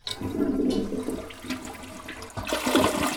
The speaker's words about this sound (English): Many traditional toilets use more than 1.5 gallons of water every flush. And if it's running between flushes, it could waste enough over 4 days to fill a swimming pool. It'll be quiet, and then all of a sudden you'll hear that tank fill again.